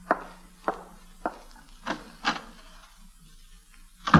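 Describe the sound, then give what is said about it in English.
A door onto a corridor being opened, heard as a handful of sharp wooden clicks and clunks spaced irregularly over a few seconds, with a final louder knock and no voices. “Now, step back against the wall so that no one can see you from the corridor when I open the door.”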